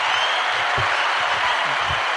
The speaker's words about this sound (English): We're just going to let it play? Yeah, sure. Fuck you, applause. I was going to let it play, but okay.